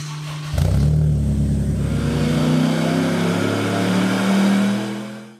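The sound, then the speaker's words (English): The engine of a KP61 Toyota Starlet circuit race car, fitted with a Honda F20 engine and weighing a touch over 800 kg, revs hard, its pitch climbing steadily as it accelerates in one long, loud pull before cutting off abruptly. No voices are heard. “there's no argument here that Angel's KP61 Toyota Starlet presents a fairly phenomenal package for circuit racing.”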